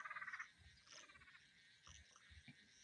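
A Western laughing tree frog gives a rapid, pulsing trill, a quick run of chuckling notes in the foreground, followed by softer, scattered calls and chirps from other frogs and insects in the background.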